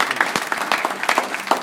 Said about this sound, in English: A round of applause. Very nicely done.